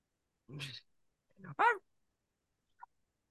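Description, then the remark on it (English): A man's voice imitates a dog barking: two short, gruff barks about a second apart, the second louder and more tonal, followed by a tiny faint blip in otherwise quiet surroundings. “They start barking like a damn dog.”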